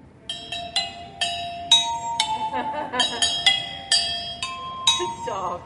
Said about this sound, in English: And that's all played on vacuum cleaner tubes that are cut at different lengths.